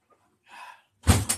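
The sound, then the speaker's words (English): A soft swishing movement, then a door swings shut with a heavy thud and a quick second knock as it settles into the frame. No one speaks. “I want to just check outside the door real quick.”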